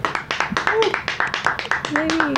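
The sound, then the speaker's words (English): An audience claps loudly and steadily for Bria Murphy, with many overlapping claps and occasional whoops and cheering voices rising over the applause. “White people clap for Bria Murphy.”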